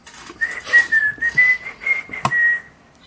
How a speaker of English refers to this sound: And then, like, whistle like I've done nothing wrong at all.